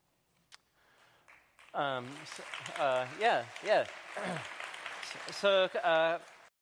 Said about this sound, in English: Now the people applaud.